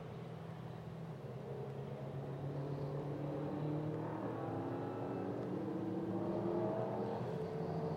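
Several race car engines fire up, roar and rise in pitch as they accelerate away together at the green flag at Watkins Glen in very wet conditions, a dense, steady drone of revving motors with no voices.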